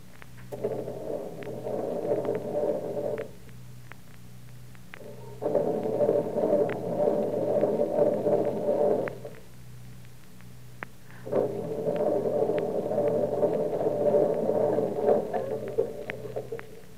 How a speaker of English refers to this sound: It must be the battery. I think it's gone dead. Oh, fine. 1 o'clock in the morning and the car won't start.